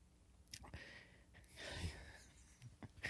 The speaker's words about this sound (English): I got to catch my breath. They're really strong.